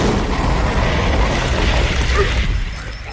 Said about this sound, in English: Our famous net launcher. The always efficient flamethrower.